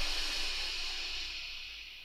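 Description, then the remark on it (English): A slow, steady, cool soothing breath drawn in, soft and airy with a hissing quality, fading gently over about two seconds with no talking. “So a cool, soothing breath.”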